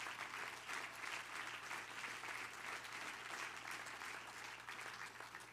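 An audience claps their hands to the Lord in steady, sustained applause, a dense wash of many overlapping claps holding at an even, fairly loud level throughout, with no voices standing out.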